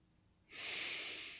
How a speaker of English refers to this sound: So I'm going to demonstrate, even though it's not that complicated, but I'm going to demonstrate. So it's breathing in, holding, breathing out, and holding.